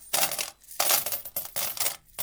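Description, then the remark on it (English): Five gold coins jingling as they're dropped from one hand to the other, several bright metallic clinking bursts in an uneven rhythm, fairly loud with brief pauses between, no voices. “The judge turned to the baker and asked, "Did you hear the jingle of the gold coins?"”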